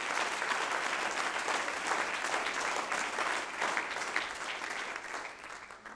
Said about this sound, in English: Oh, somebody clap your hands unto the Lord right now.